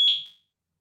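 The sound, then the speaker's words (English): A single shrill smoke alarm beep, set off by smoke from food being cooked, rings out at a steady high pitch, then quickly fades away, leaving silence with no voices. “I thought that was me for a second. I think, why is mine beeping? No, they're making some food out there. Got too smoky, I guess.”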